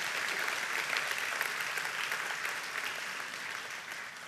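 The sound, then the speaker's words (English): A church audience breaks into steady, sustained applause on Mother's Day to honor mothers, a dense wash of many hands clapping at an even loudness throughout, with no voices rising above it. “You don't have to if you don't want to, but you could clap right now if you felt like it.”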